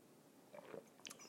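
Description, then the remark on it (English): A few brief mouth sounds of someone sipping coffee: soft slurps and a small gulp, fairly quiet, with no talking. “It's called the Simultaneous Sip, and it's going to happen now.”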